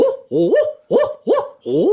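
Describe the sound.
A person imitates an owl, giving five loud hoots in a quick, steady rhythm, each one swooping upward in pitch with a breathy edge.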